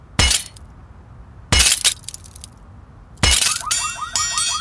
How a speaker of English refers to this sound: Detective Temurunga shattered the quarter-light window of the left rear passenger door, breaking into the Land Rover